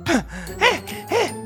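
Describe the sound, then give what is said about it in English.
A voice imitates heavy animal panting with a rough growl: three loud, breathy, groaning exhalations at a steady rhythm, with short pauses between them. “Just then, she heard a deep growl. Heavy panting.”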